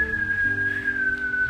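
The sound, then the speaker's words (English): A person whistles one loud, sustained, steady note that drifts slightly downward in pitch over about a second and a half, with a low background hum and no talking. “If I was whistling on you on that fucking thing.”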